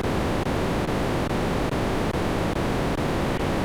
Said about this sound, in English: I don't know why I'm getting this static.